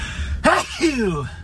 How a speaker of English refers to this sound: You never hear sneezes on podcasts. That's how you know it's just real. I didn't edit that out. I'm just here chilling with you, and there's really no risk of any, you know, Delta variant in that sneeze, because you're just listening to a podcast